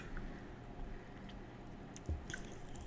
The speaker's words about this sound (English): Also, I'm going to take this shot on air since you took yours on air. Give my feelings on it. I'm nervous, though, because your reaction wasn't good. There's still a little bit left. I don't know. It was too tequila-y for me. Shit. Okay. Cheers.